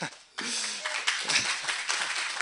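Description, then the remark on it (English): Worshipers at a church service clap their hands together in a dense, steady wash of hand claps, fairly loud, with a faint voice briefly audible underneath. “Clap your hands, all peoples.”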